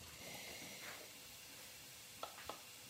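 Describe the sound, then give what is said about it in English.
Three teaspoons of cumin seeds sizzle steadily in about 3 to 4 tablespoons of hot olive oil with a soft, even crackling hiss, broken by two small sharp pops near the end. No one speaks. “We are going to add 3 teaspoons of cumin seeds and just let it sizzle.”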